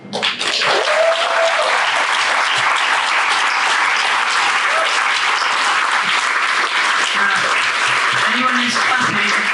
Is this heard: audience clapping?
yes